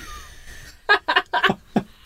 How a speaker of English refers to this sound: Oh, a bellows. It sounded like a bellows. I thought there was something industrial happening behind me, and I turn around, and it's just you breathing.